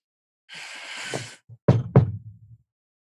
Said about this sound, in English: So, you knock on the door and there's a pause